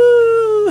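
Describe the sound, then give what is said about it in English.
A person in a studio imitates a wolf howl, a single loud, sustained tonal note held steady for most of a second before breaking off with a short rough tail. “Did you think a wolf just came into the studio just now when I did that?”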